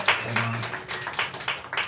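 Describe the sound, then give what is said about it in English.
An audience claps in a brief, scattered burst of applause, moderately loud, with a few overlapping hand claps and faint voices mixed in, after being asked to clap if they have ever protested anything. “Clap if you've ever protested anything.”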